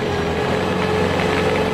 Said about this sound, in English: Ice resurfacer. Watch the people out there on the ice. They glide as they skate round and round. But the more that they skate and they skate and they skate, then the ice becomes rough on the ground. That's when this truck comes around for his turn.